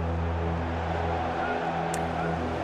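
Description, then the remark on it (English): A propeller plane drones steadily overhead a Premier League stadium during a Burnley match, a continuous low engine hum with a broad rushing noise that holds at an even loudness throughout. “Now, listen up to the sound of a plane.”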